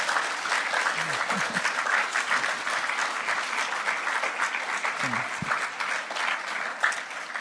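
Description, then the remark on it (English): Steady applause from an audience giving another round of applause to a man being thanked, a dense continuous patter of many hands clapping at a constant loudness for several seconds, with a couple of faint voices briefly audible beneath it. “and would you just give him another round of applause?”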